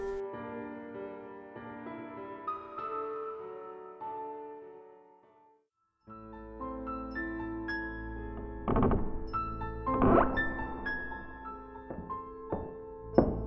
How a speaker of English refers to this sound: Footsteps? Downstairs now?